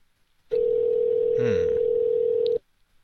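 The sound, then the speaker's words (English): A single steady telephone ringback tone on a call to a poker room, a flat low-pitched buzz lasting about two seconds before cutting off, with a brief crackle of line noise midway and no one talking. “Yeah, it's ringing.”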